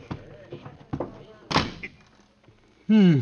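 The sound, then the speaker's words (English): A supply closet door in a school shuts with one solid thunk, surrounded by soft bumps and shuffling; a voice starts up loudly right at the end. “Here's a door. Oh, for supply closet. Well, I'll have to squeeze in.”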